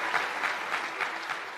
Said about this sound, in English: shouted, "I will not resign," five times to great applause from the crowd.